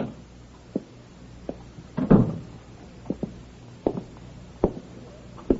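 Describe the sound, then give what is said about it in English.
An apartment door suddenly opens with a louder rattling clunk partway through, surrounded by scattered light clicks and taps. “Suddenly, the apartment door opens.”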